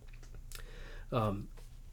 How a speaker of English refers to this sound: You can hear me typing in the background.